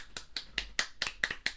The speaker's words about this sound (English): Round of applause.